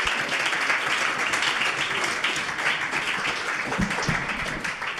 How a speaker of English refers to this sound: Thank you very much. Can you give them another round of applause as they go back to their seats?